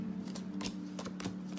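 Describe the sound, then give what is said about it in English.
A deck of playing cards being shuffled, with several quick papery riffling bursts in a row over a steady low hum. “I'll probably help if I shuffled the cards and didn't just give you the same cards as the last person.”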